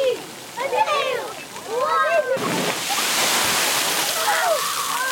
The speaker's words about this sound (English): Like, you wait for the bucket, and then, like, the bucket falls when there's too much pressure of weight. And then, like, there's, like, a big waterfall on you.